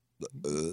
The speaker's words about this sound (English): I always like my introduction to be followed quickly by a belch. Yeah, it was spontaneous, to be candid with you, but alas, there it is.